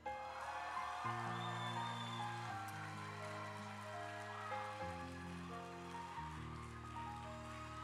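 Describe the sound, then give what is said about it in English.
A crowd claps steadily for the pastor's wife in a dense, continuous wash of applause, while sustained low organ or keyboard chords hold underneath and shift every couple of seconds. “She got a little higher clap.”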